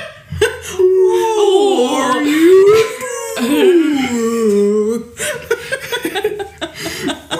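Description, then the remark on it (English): A voice imitates whale calls with long, wavering moans that slide up and down in pitch for several seconds, then breaks into shorter, choppy sounds. “We can just make whale noises the whole time.”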